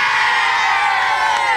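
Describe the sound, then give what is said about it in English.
A crowd gives three cheers after a game, shouting a loud, sustained "hooray" together in answer to "hip hip", many voices blending into one steady roar that holds at full volume for over a second. “And three cheers for him. Hip hip! Hooray!”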